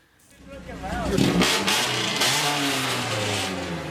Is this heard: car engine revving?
yes